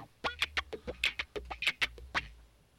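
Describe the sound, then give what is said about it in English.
A rapid, warbling turkey-style gobble played on guitar: about a dozen quick, bright pulses in a tumbling run lasting roughly two seconds, loud, with no talking over it. “I like the guitar work in there.”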